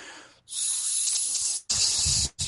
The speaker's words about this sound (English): And after that, I'm going to take a nice long sip of Karelin's sweet tea. the sweetest tea in the galaxy. Listen to how long this sip is.